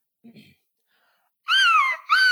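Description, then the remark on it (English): A person imitates a seagull with two loud, shrill cries that slide downward in pitch, the second one cut off abruptly. A brief, faint murmur comes first. “It sounded like a seagull.”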